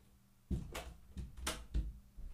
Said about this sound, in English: God, I'm closing the door on her. I'm closing the door. This is she's banished from the house.